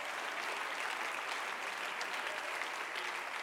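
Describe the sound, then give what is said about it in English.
A church audience applauds the men of the church in a steady, dense wash of clapping that holds at an even, loud level for several seconds without any voices rising above it. “The church, come on, I think we ought to applaud the men in a day where there's a crisis among our men in our world.”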